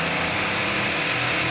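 A blender runs steadily, a loud, unbroken whirring roar of its motor with a bright high-pitched whine on top, holding an even level throughout with no voices.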